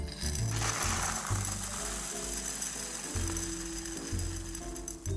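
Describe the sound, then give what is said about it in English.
Sugar, used as pie weights, pours steadily into a pie crust up to its top edge, making a continuous granular rattling hiss that runs for several seconds without pause and stays fairly loud throughout. “But I'm gonna just go ahead and pour it in.”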